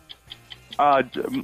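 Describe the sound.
A 45-second countdown timer ticks in quick, even clicks, about five per second, clear, before a voice breaks in and talking continues over it.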